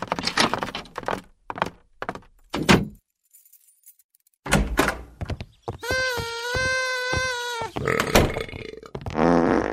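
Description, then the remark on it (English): A long, loud fart with a buzzing, wavering tone that stretches for about two seconds, preceded by rustling and thumping noises and a brief pause of silence. “Now that's what I call a blowout.”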